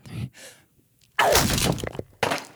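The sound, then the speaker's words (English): A wall being punched down: two softer thuds, then a loud crash of breaking material with crumbling debris for almost a second, and one more sharp impact at the end. “But you're going to have a lot of fun because you love punching down walls.”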